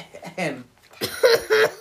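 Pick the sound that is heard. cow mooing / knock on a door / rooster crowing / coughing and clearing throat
coughing and clearing throat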